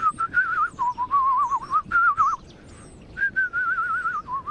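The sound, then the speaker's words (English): A person whistles a rapid, warbling bird-like melody imitating bird song, fluttering up and down in quick trills, pausing briefly, then resuming. No talking. “Well, start basically by whistling.”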